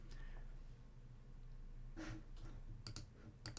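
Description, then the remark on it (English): Several sharp computer mouse and keyboard clicks, a cluster of quick taps near the end after a brief rustle, over a low steady hum with no talking. “You're going to hear me clicking away right here, but I'm going to bring up something very important.”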